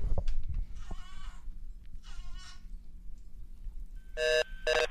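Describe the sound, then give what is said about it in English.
A telephone busy signal heard while calling someone's phone: two loud, steady electronic beeps at the very end, repeating in an even on-off pattern, preceded by warbling, bleat-like tones with no one talking. “Just cowering in a busy corner signal right now.”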